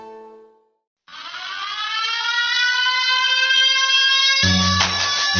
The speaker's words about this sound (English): The siren is sounding. The warning is here.